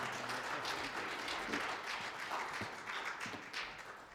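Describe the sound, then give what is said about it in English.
An audience applauds steadily to welcome a visiting pastor from West Virginia, a dense wash of many hands clapping at once that holds an even, full loudness for the whole stretch, with no voices standing out above it. “Can we give Jesus the applause He deserves?”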